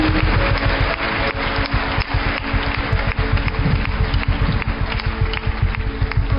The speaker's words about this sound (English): Clap for Jesus. Clap for Jesus. Clap for Jesus. Right now.